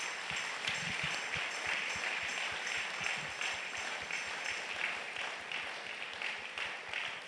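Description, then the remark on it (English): A large crowd applauds steadily as a clap offering to God after a prayer, many hands clapping at once in a dense, sustained wash of sound with faint rhythmic patters, fairly loud and continuous with no talking. “For receiving the touch from God, give a clap offering to God.”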